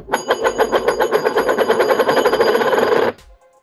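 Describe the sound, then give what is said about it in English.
A coin spins on a hard surface, a steady metallic whirring rattle with a bright ringing tone that holds for about three seconds, then stops abruptly. No voices are heard. “Make the sound with the coin.”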